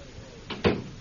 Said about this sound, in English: Close the door.